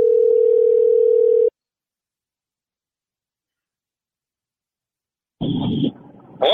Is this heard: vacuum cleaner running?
no